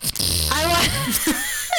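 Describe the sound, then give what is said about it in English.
A voice imitates a fart with a buzzing, sputtering lip trill that wavers in pitch for over a second, followed by a couple of short, breathy vocal bursts. “You know, when you're like in a public restroom and somebody, you know, is trying so hard to suppress it and then they fart and then I'm like.”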